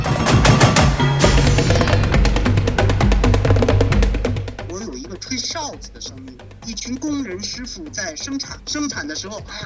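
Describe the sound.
Lively instrumental music driven by rapid, steady percussive strikes that clatter like machinery, loud at first, then softer as a voice talks over the continuing beat.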